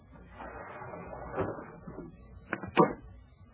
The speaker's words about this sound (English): Hours later, I was sitting in an easy chair in a corner of the dark room, and I heard the window being forced.